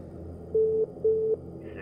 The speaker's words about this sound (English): Then the call waiting signal beeped, and that little red light on the phone cradle started blinking.